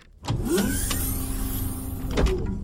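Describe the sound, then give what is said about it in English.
An automatic door slides open on a spoken command with a steady electric motor whir and mechanical hum, marked by a clunk as it starts and another jolt near the end. “Door open.”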